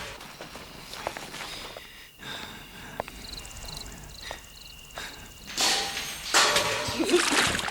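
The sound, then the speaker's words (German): Scuffling footsteps and small knocks in darkness give way to a loud, broad gush of water splashing and sloshing for a couple of seconds as a rain barrel is knocked over, with no voices. “Sie habe die Regentonne umgeworfen”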